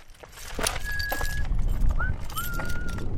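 A set of keys jingles in a few short metallic clinks and rattles as a City of Page water department worker pulls them out after walking across crunchy red dirt in Page, Arizona, over a steady low outdoor rumble with faint thin whistling tones in the background.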